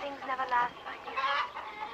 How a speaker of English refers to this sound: Yeah, I say farmhouse because I think I heard a chicken.